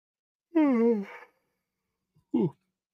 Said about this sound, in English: Sorry, had a yawn come out there.